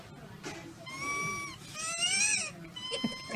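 Squeaky, whistling breaths from a person who inhaled the squeaker device from inside a toy: three or four high, tonal squeals with sliding pitch, each lasting about half a second, fairly loud over a faint background murmur.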